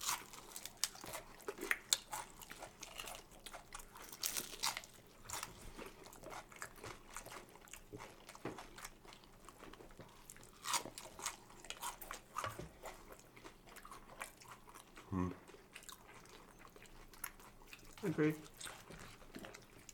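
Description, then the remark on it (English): Biting and chewing of a crunchy egg roll with pork inside, with irregular crisp crunches from its crunchy outer part and wet mouth sounds repeating steadily throughout, fairly quiet overall with faint voices in the background. “I like the outer part of it because it's crunchy.”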